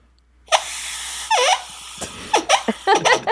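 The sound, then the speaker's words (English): A voice imitates a Bigfoot shriek: a long, strained high-pitched cry, then a wavering wail and a burst of short, sharp squeals rising and falling in quick succession. “All right, now here's the shriek.”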